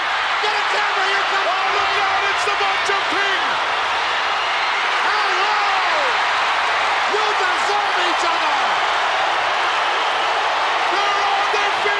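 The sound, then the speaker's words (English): A big wrestling arena crowd roars and cheers ecstatically nonstop at full volume, a dense wall of noise with sharp whistles and individual shouts popping out above it, as Sherri Martel is thrown into Randy Savage and they collapse outside the ring. “They collapse outside the ring. The crowd is ecstatic.”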